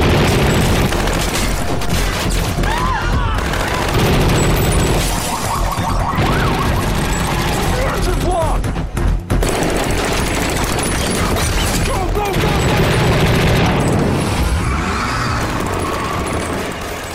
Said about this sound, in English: And then recently, I really loved The Town and Inception. I just loved what the gun sounded like in those two.